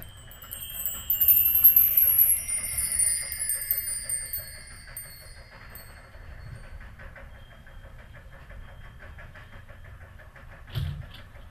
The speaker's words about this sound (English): Sitting behind your desk in your big new office, all you can hear is the tick-tock of a grandfather clock as you await the arrival of your assistant, Hampton.